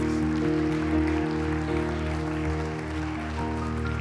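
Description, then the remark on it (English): An audience claps in praise, a dense, steady patter of many hands blending with sustained musical tones underneath throughout. “Can you give me a hand clap of praise today?”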